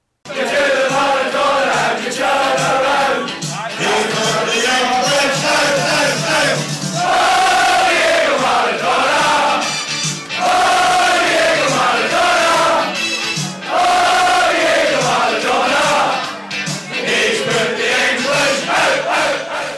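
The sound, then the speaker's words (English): A large crowd of Scotland's Tartan Army football fans sings a chant, inspired by Diego Maradona's Hand of God goal putting England out, in unison, loud and sustained, with rising and falling melodic phrases repeated over about twenty seconds and brief pauses between lines. “Diego Maradona's wonderful Hand of God goal, putting English out, classic moment, which of course generated this famous song from the Tartan Army.”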